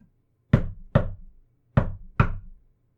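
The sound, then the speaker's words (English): Four firm knocks on a bathroom door, struck in two quick pairs with a short pause between, fairly loud against a quiet background. “Broken from her thoughts, she heard the knocking from the bathroom door.”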